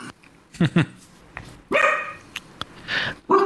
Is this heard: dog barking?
yes